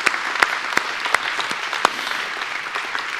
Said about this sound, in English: Boy, if you love that passage, would you give him a hand clap? Wow.